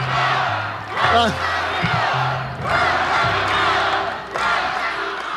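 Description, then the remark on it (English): A large crowd at a political rally chants and roars for Tommy Thompson, who is thinking about running for U.S. Senate, in rhythmic waves, loud and sustained, with voices swelling in repeated surges and a few shouted calls rising above the mass of noise. “Tommy Thompson is thinking about running for U.S. Senate, and the crowd is chanting.”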